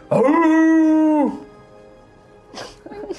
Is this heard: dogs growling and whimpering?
yes